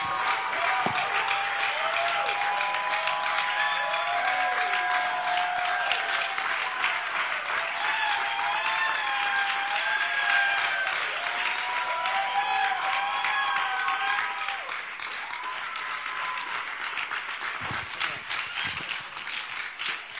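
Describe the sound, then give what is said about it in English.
An audience claps and applauds steadily for about twenty seconds to welcome a preacher, a dense, continuous patter of many hands with excited voices and cheers woven through, easing slightly toward the end. “Please now, with a joy and with a clap, let's welcome God's servant to share the word of God with us.”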